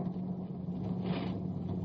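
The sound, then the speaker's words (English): A truck engine rumbles steadily with a low droning hum, swelling slightly as it rolls past; no voices are heard. “When that truck goes into the planks, flatten out.”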